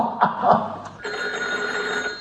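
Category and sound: signal or alarm, telephone ringing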